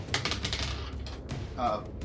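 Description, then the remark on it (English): Three dice clatter and tumble across a hard table during a tabletop game, rolled by a player boosting himself, in a quick burst of sharp, rattling clicks, with faint background chatter and room noise underneath. “Why are you rolling three dice, Joe?”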